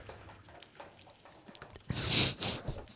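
Someone gulps down water up close, a short run of wet swallowing and slurping sounds that rises suddenly after a quiet moment and fades within about a second.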